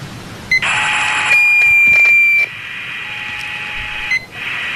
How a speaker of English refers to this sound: There's not a single audible channel. Whatever that interference is, it's blocking our ability to send our own transmission.